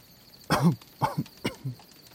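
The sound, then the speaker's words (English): Three short, rough, fairly loud coughs in a row, each a harsh burst with a brief gap between, followed by a softer throaty trailing sound. “I think I'm fine. I'm just a cough.”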